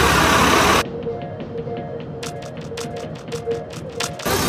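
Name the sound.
bus engine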